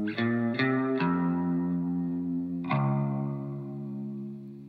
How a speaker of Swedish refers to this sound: Just det är faktiskt min, man hör ett vibrat, vi kan lyssna igen. Det är tremolo också. Ja, precis. Vibratot från förstärkaren från min quad reverb. Fender har ju ett sånt vibrato, heter det där.